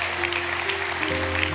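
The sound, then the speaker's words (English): A church audience applauding people who are standing, a steady, dense wash of many hands clapping with no pauses, over a low sustained hum. “Just receive the applause of the people around you.”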